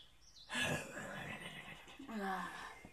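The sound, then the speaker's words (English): A person vocally imitates a horse lying on the ground being fed straw: a loud, drawn-out nasal neigh that wavers in pitch, breaks briefly, then rises again before trailing off, with no other talk. “As a horse kind of just, like, lays on the ground, she goes...”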